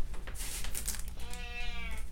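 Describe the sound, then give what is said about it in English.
A female cat named Kitty gives a single drawn-out meow with a slightly wavering pitch, after a second of soft rustling background noise. “She's telling us about it right now.”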